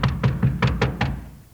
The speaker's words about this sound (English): All right, I'll knock.